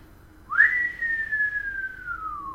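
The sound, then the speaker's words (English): A single human whistle by a man leaving an apartment, sliding quickly up in pitch and then drawing out in a long, slow descending glide, clear against a faint background hum. “But, like, he all he does is that whistle, and then he closed the door.”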